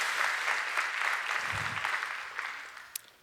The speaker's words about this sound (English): Yes, you can clap for that.